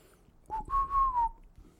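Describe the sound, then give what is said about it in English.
Someone whistles a short tune, a clear pure tone that slides and bends through a few connected notes over less than a second, with quiet breathy noise around it. “I'm just going to keep whistling it.”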